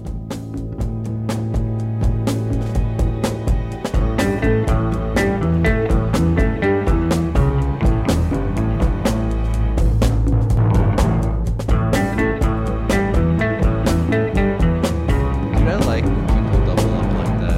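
An instrumental track loops one riff over and over on a steady driving beat, the full band staying loud and dense from start to finish with no singing.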